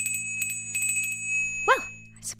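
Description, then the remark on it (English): A dinner bell rings with several quick metallic strikes, leaving a steady high-pitched tone that lingers, and then a man starts talking over the fading ring. “that's the sound of dinner.”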